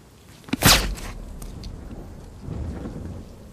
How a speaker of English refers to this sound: The silencer makes a whisper of the gunshot.